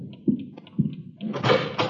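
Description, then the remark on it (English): A couple of dull thumps, then a door is pulled open for a man from next door delivering a new telephone directory, with a brief rushing, scraping sweep, moderately loud, with no one speaking. “Okay, I'll cover you. Open it.”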